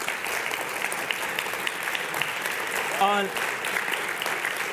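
An audience at a worship service claps steadily throughout, a dense, even wash of many hands with no clear beat. A brief voice calls out over the applause partway through.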